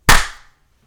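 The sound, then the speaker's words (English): A single sharp hand clap made to sync a recording, loud and bright, with a brief ringing tail that fades within half a second into silence. No voices. “Did we clap on this one?”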